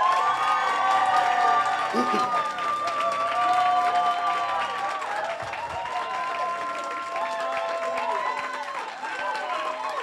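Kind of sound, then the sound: crowd, audience applause and cheering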